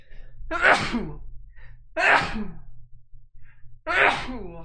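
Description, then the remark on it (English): Three loud sneezes spaced roughly a second and a half apart, each a sharp burst over a faint low background hum, with no talking in between. “I might sneeze and we'll get into God's word.”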